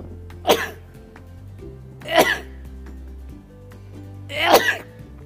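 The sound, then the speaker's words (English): Three sharp sneezes burst out, spaced a couple of seconds apart over a low steady hum, with no talking in between. “And I was, here comes that sneeze again.”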